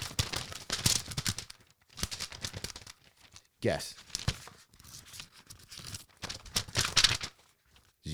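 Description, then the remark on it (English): Paper from a small yellow Kmart legal pad from 1976, with an idea written on it, is shaken, producing several bursts of loud crisp flapping and rustling separated by short pauses, with a single brief spoken word in between. “Did you guess small yellow legal pad? If you guessed that, then that's a twofer.”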